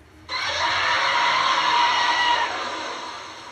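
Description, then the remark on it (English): The roar of the giant monster Zambolar, made by combining roars modified from both Godzilla and Gamera: one loud, shrill, screeching bellow that bursts in abruptly, holds steady for about two seconds, then trails off into a fading, rumbling tail. No one speaks. “Zambolar's roar is a combination of roars modified from both Godzilla and Gamera.”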